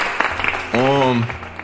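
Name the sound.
clapping applause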